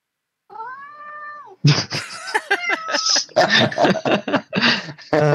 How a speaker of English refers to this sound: My cat is being very loud right now.